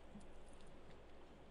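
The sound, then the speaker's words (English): A steady hiss of telephone line noise on a caller's line during a WTIC radio call-in show, then a short, bright electronic beep right at the end. No one speaks. “I hear some beeping.”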